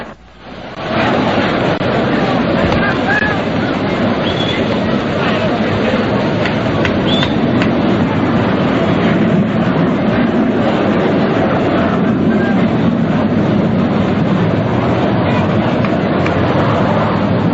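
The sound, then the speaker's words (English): A steady, broad roar of a jet aircraft high overhead during a baseball game at Ebbets Field holds at an even loudness for the whole stretch, blended with a low murmur of the ballpark crowd. “There was a jet high overhead.”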